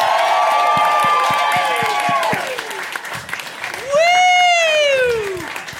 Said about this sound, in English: could you please put your hands together and welcome to the stage